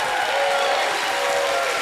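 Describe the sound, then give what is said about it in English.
A crowd stands and claps and cheers in praise of God, a dense, steady wash of applause with shouts and a bright tonal hum running through it, loud and continuous for the whole couple of seconds. “Somebody in the house, everybody in the house, everybody in the house, stand and give God a hand clap and a shout of praise.”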